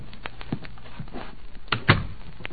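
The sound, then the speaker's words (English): A door is pulled shut: a few soft clicks and knocks lead into one heavier thud, fairly quiet, with no one talking. “Close the door.”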